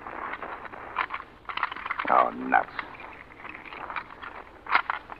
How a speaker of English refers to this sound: Come on. We'll try this back door anyway. Oh, it's locked. Here's an axe. Yeah, wait a minute. Let me try my keys.